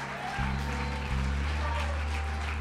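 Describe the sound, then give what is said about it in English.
An audience claps steadily to bear witness during a worship service with baptisms in Jesus' name, a dense continuous patter of many hands, while deep sustained bass or organ notes swell in underneath after a brief moment. “And I need somebody to keep on clapping and bear witness right now.”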